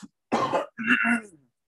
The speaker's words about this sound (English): Oh, look, he's milking it for the audience. He's coughing. He's clearing his throat.